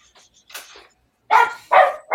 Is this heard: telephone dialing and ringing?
no